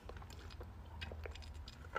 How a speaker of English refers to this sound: And hold on, guys. I need to drink some water because I'm getting fucking dry mouth right now.